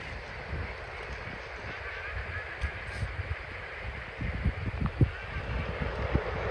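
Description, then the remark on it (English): A large flock of ducks taking off from dry ground about 500 or more yards away, their wings making a steady, rushing roar like wind or a passing train, with some low rumbling swells toward the end. “And about 5 seconds in, listen to their roar. That's ducks getting up.”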